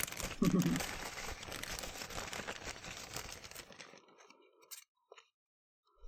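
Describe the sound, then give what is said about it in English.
A cat-proof plastic bag crinkles and rustles steadily for several seconds, a dense crackling that then thins out into a few faint, scattered crinkles before falling quiet. “Get the cat-proof bag.”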